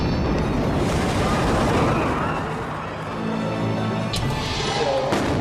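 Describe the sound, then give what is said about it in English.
A loud bomb blast, one of twin explosions at the Boston Marathon in Boston, booms and rolls into a heavy, sustained roar that fills the whole stretch, with faint shouting voices surfacing under the rumble near the end. “Terror at the Boston Marathon. Twin explosions shatter a celebration.”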